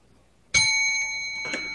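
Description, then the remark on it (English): A small metal bell rings out with a bright, sustained shimmer, then is struck again a second later while the first tone still hangs in the air. Clear, with no voices. “When I ring the bell, you may go.”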